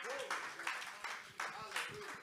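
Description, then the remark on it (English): An audience claps their hands together in a sustained burst of applause as a hand clap of praise to God, swelling in loud waves every few tenths of a second, with voices calling out over the clapping. “If that's what you believe, I want you to give God a hand clap of praise.”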